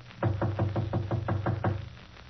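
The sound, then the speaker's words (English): A quick, steady series of about seven solid knocks on a partly open apartment door, fairly loud, evenly spaced with a hollow wooden thud, then silence; no one speaks. “If he's home, why doesn't he answer? I'll knock again.”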